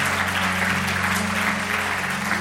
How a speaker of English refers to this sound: Come on, let's give the Lord a great clap offering.